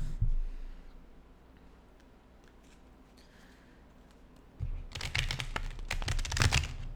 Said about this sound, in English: Okay, I'm going to do past, present, and future. So I'm going to shuffle the cards 3 times.